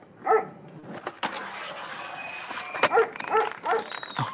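dog barking and whimpering

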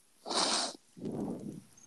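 breathing into the microphone

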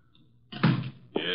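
door opening

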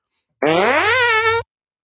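fart sound effect

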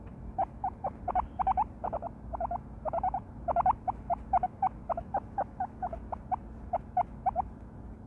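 guinea pig squeaking

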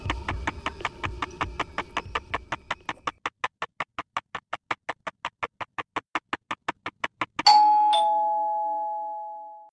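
doorbell ringing

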